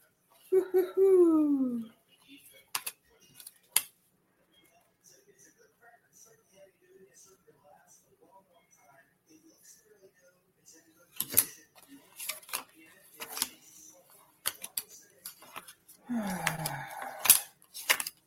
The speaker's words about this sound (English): So let me shuffle through these cards.